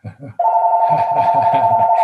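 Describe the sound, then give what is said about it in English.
A speaker's own telephone rings with a loud, steady electronic tone that starts abruptly and holds continuously; it cannot be muted, and the speaker keeps talking underneath it. “And there's my telephone.”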